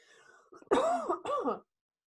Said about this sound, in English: But excuse me, I've had a lingering cough and it's not COVID.